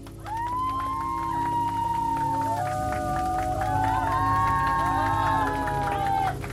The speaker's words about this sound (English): The neophytes applaud after I wrap up my announcement.